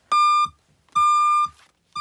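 A vehicle's reversing warning beeps in a steady repeating pattern as it backs up, loud, high-pitched tones about half a second long with short gaps, three beeps heard with no talking.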